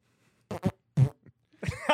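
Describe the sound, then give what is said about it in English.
A voice mimics flatulence with a few short, buzzy, sputtering bursts separated by brief pauses, loud, ending in a longer raspberry-like blast. “Dude, that's like a real fart almost coming out.”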